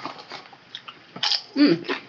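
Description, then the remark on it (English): Crisp, crackly crunches of someone biting into cheddar barbecue snack chips right into the microphone: a few faint early crackles, then two louder bursts of crunching, with a short voiced murmur during the second. “Yeah, just crunch right into the microphone there”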